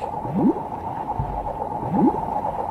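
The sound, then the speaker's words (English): A sound effect for jellyfish in a documentary: two soft, rising underwater bloops about a second and a half apart as a jellyfish pulses forward, with a deep thump between them, all over a steady muffled wash of whooshing water. No voices. “I watched a documentary that featured jellyfish, and one of the things that you hear every time they move, they sort of like, pulse forward, you'd hear this bloop. Yeah. Like whooshing water.”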